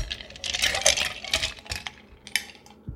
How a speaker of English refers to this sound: All of that is in the shaker, and I'm going to add ice.